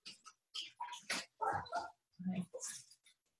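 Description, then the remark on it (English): A dog lets out a quick series of short, excited barks and high yips, moderately loud, with brief pauses between the bursts, as someone arrives home. “The dog started barking.”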